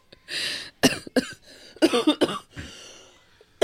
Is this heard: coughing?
yes